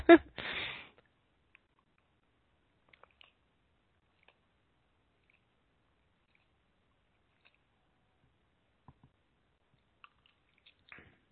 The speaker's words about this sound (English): Let's get a drink of water here, please. Or whatever you're drinking. Hopefully it's healthy.